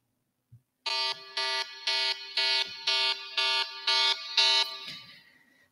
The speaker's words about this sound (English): I am really not a big fan of alarms. They just make me panic. And I'm like, what's going on? What do I have to do?